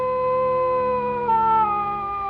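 A wolf howls in one long, sustained, fairly loud cry whose pitch drifts slowly downward, with no voices present; howling heard in a Dracula film.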